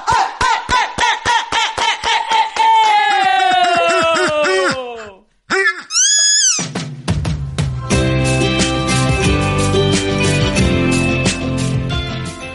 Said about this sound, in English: Can I be a part of the slow cut? Slow clap it off. Okay. Start slow, Robin.